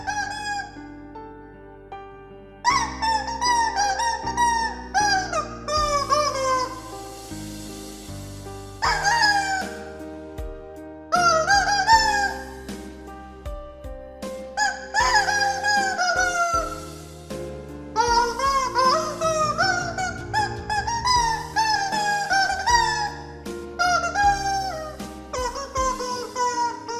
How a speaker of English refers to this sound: That was the rubber chicken … version of it.